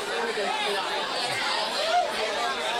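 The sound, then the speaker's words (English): Crowd chatter from a huge crowd at Flanagan's pub at night: a steady, dense babble of many overlapping voices with no single speaker standing out, holding an even loudness throughout. “but unable to get into the microphone because of the huge crowd at Flanagan's tonight.”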